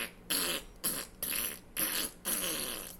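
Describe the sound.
A voice imitates an old lady's loud, sputtering fart in several rapid bursts, each broad and raspy, delivered alone over about three seconds.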